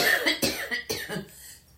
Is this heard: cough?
yes